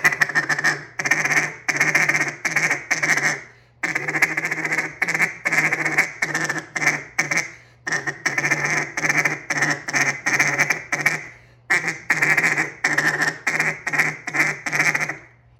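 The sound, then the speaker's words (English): A duck call blown in a rapid feed chatter using the tongue, loud, a fast run of clipped quacking notes broken into several long sequences separated by brief pauses, with no voices. “But on the feed, the fast feed, I'm going to utilize and just take that tongue.”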